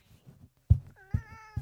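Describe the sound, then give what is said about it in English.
A pet cat named Nori meows, a short drawn-out cry with rising and falling pitch, followed by soft thumps and a couple of sharp low knocks. “This is my cat, everyone.”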